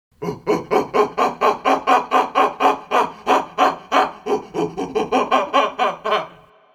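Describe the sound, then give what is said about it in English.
A person imitates a howler monkey's call with a steady run of about twenty loud, guttural, hooting grunts, repeated rapidly and evenly for several seconds with no other talking. “That is only an approximation, but it was good enough to fool a howler monkey, so I guess it was, you know, good enough.”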